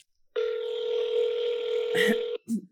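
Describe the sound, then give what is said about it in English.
A house phone, used to call a man, emits a steady electronic tone for about two seconds, clear, then cuts off into a couple of brief clicks or handset noises. “Should I think I'll call him on the house phone? Okay.”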